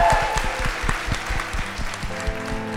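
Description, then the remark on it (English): An audience claps steadily in a dense, sustained round of applause for Carrie Ann, loud throughout, with a faint musical tone rising underneath near the end. “A round of applause for Carrie Ann.”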